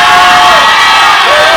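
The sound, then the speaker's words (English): A loud, dense crowd shouting and cheering in praise of God, a continuous roar of many voices with whoops rising above it, filling the whole moment without a break. “Matter of fact, you ought to stop praising and shouting God to God right now.”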